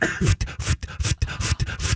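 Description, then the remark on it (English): A person imitates a pump with their voice, making a steady series of breathy, huffing bursts about four per second, fairly loud, with short gaps between them and no words. “I do an imitation of the pump, too.”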